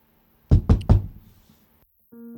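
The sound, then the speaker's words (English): Three firm knocks on a wooden door in quick succession, resonant, followed by a brief silence and then a low tonal hum or music starting faintly. “gets a knock on her door.”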